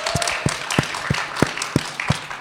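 An audience applauds, a dense wash of clapping with a few louder, evenly spaced claps standing out in a steady rhythm, moderately loud and close, with no one talking.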